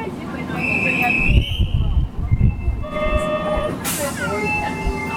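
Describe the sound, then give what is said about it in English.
Interior of a moving car on Kyoto's subway: a steady low rumble with rising and falling electric motor whines, rattling from the carriage, and a brief burst of air hiss near the end. “We're on board of Kyoto's subway to give our score on transportation accessibility.”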